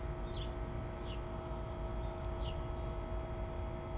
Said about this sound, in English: The neighbor's birds are a little more talkative today.